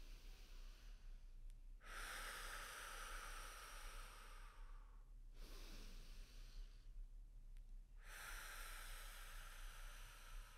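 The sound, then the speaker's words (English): Slow, deep breathing in a breathing exercise: long airy inhales through the nose alternating with broader hissing exhales through the mouth, about two full breath cycles in a steady, unbroken rhythm with no talking. “It's just in through the nose, out through the mouth without pause in a continual circle.”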